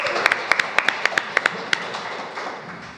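Audience applause as a woman is invited up to introduce herself and tell her story: a brisk run of about a dozen sharp, crisp claps in a steady rhythm, loudest at first, then trailing off into a soft, murmuring wash of noise.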